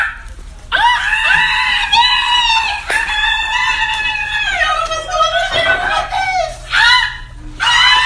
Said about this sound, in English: These screams that you are about to hear are all from men.